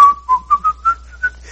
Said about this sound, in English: And I'm just going along. I don't remember what I was whistling, but I remember I was whistling.